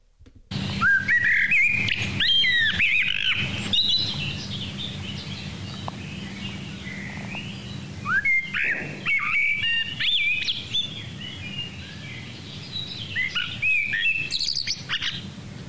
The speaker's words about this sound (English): Was it a blackbird? That's the one.